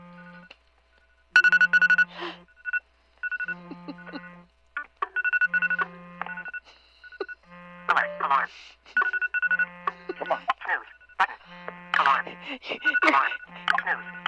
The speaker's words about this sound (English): One moment. All of my alarms are coming on. Oh, that's right. The 12 minutes. Stop.